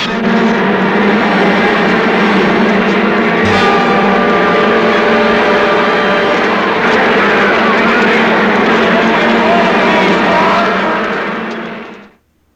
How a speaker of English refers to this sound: Ah, there you go. The bees.